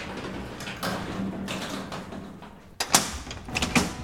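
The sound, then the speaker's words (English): Grimy metal elevator doors slide shut with a rushing mechanical whoosh, ending in a sharp metallic thud and a couple of lighter clunks. The sound is fairly loud, with no voices. “As the doors closed, I saw that someone had painted a stylized griffin there on the grimy metal with the words, "If a man's condition is unjust, the only way of overcoming is to be just himself."”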